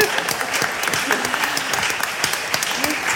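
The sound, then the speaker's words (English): A crowd applauds steadily, dense clapping filling the air at a fairly loud level with a few faint voices mixed in underneath. “You round of applause for me.”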